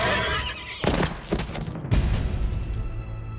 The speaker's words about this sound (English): Theseus rose and lunged toward the centaur who held Hippodamia, plunging a knife into the horseman's chest. The centaur neighed in agony and collapsed.